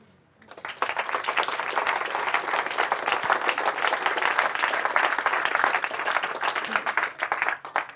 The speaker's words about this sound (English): Thank you very much. That was a nice wee clap.